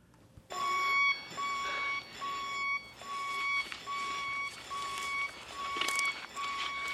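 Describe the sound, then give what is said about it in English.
A blaring sci-fi spaceship alarm from the film Alien, as Ripley goes back onto the Nostromo: a harsh electronic tone pulsing in quick, regular bursts, about ten in a row, loud over a hissy, rumbling background with no talking. “I'm going to be so annoyed because I know that sound. I know that alarm, but I cannot place it.”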